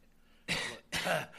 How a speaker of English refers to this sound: I've been getting over this nasty cough.